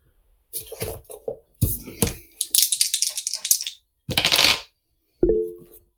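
Dice clatter and rattle in several quick bursts, tumbling and skittering across a hard surface, with a final sharp clack that rings briefly; the roll comes up 16.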